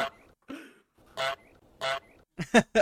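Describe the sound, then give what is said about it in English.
A soundboard goose sound effect honks loudly, a series of nasal, brassy honks with short pauses between them, ending in a quick burst of three. No one speaks. “Oh, and we got some for that. Look at that goose egg.”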